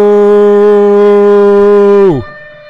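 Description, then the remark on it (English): A loud siren holds one steady, buzzy low tone for about two seconds, then its pitch sweeps sharply downward as it winds down and cuts off. “I wanted to do the siren just because”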